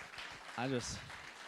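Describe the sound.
An audience applauds in a steady wash of clapping, and a single voice rises in a brief cheer partway through.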